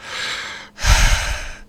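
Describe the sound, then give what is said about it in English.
Two heavy, breathy exhales right up against the microphone, the first airy and hissing, the second louder with a rough, low rumble of air blasting the mic. “That's me breathing close to the mic.”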